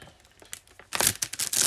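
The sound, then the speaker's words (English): A plastic peanut butter chocolate chip snack wrapper crinkles softly, then gets louder as it is tugged and torn open, with sharp rustling bursts and no voices. “How do I open this? So I have the other package, which is the...”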